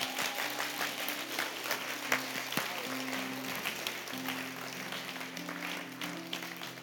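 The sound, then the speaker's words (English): An audience applauds steadily for three family volunteers as they come up, a dense wash of many hands clapping that holds at an even level for about seven seconds, with a low steady hum running underneath and no voices. “Go ahead and applaud for them as they come.”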